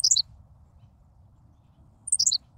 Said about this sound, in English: Amazingly, a Henslow's sparrow values brevity even more. That was it. In case you missed it, here it is again.